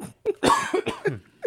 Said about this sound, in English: Sorry, boys. Still got a little bit of a cough.